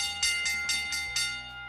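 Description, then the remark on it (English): A bell clangs five times in quick, even succession, bright, its metallic ringing tone sustaining between strikes with no voices present. It marks the 'Bell Lap', the final segment of the radio show In the Locker Room with Wolf and Starks on ESPN Pittsburgh. “It is the Bell Lap time!”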